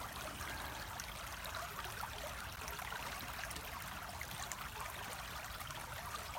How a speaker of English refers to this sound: The water continues to just wash away any thoughts, any stresses as you lie there.